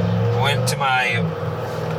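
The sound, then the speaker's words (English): Car brakes squeal in a short, wavering high-pitched whine lasting about a second, heard over a steady low engine rumble inside a moving vehicle. “We went out to a couple places, a couple spots, and I just hurt my brakes. Yuck.”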